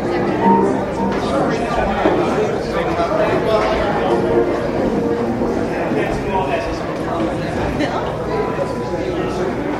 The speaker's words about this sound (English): You can hear at the end of that clip that the crowd was starting to come in and folks were finding their seats